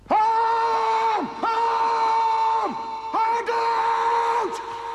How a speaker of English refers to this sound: Yeah. Me. I did take that scream.